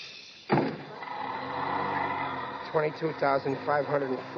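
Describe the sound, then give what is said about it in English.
A bus door shuts with a sudden heavy thud, followed by a steady engine hum, with indistinct voices rising over the rumble near the end. “Watch the door.”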